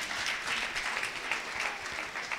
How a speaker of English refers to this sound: Come on, give Him one more round of applause.